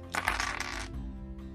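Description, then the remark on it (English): A handful of many dice clatter and tumble together in a dense, rattling burst, then settle quickly into quiet with a faint hum beneath. “Time to roll many, many dice.”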